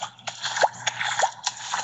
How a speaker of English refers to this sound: Ah. That sounds like at least a few inches of water there. Try to keep those socks dry.